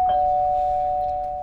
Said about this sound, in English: So I'm here in Los Angeles, California, to insult Hollywood action man and former wrestler Dave Bautista. I'm here outside his house, just going to press the doorbell.